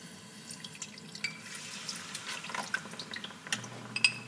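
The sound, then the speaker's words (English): Half a cup of saffron water being poured into a thick, cornstarch-thickened pudding, a steady trickle with soft wet splashes and small drips scattered throughout, fairly quiet, with no voices. “You can start adding your flavors in your saffron water, 1/2 cup.”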